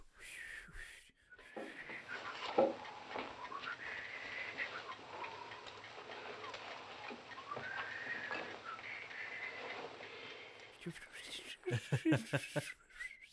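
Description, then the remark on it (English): A person imitates a grandfather's breathy, tuneless whistling, mostly airy hiss with a faint wavering pitch, like blowing into a bottle, held for several seconds before a few short sounds at the end. “That's how my grandpa used to whistle. It's like... It sounded like he was blowing into a bottle.”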